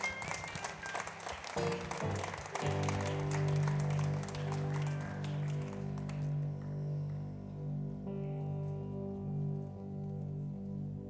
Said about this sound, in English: Give our young people another big round of applause.